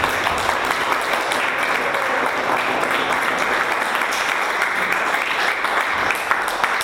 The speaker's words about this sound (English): So please join me once again in offering her a very warm round of applause.